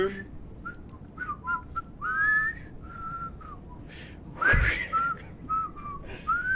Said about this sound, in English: Can't sustain a whistle for that long.